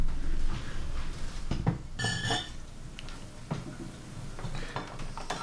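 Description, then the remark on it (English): A drink being fetched and opened: rummaging with soft clunks and clinks of glass, then a short bright burst like a cap coming off, followed by more quiet handling noises. “Do you want to pop the battle axe before we do it, or do you want to...”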